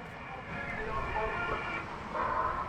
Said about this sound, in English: What the fuck is that? There's some crazy ass speakers. It sounds like he has external speakers on his car. Yeah, but the only noise he's pumping out is like. Random sound clips from a festival or a carnival, like clowns speaking backwards